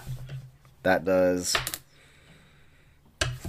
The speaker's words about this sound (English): I keep dropping the dice. Okay. That's what you're supposed to do. Just not on the table.